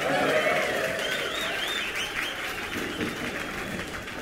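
A live audience gives the crew a round of sustained applause, dense clapping at a steady loudness, with a few whoops and cheers rising over the crowd noise.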